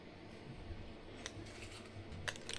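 A few sharp, hard clicks and rattles of dice dropped into a container land over a low background rumble, with a clear clack near the middle and a quick cluster near the end.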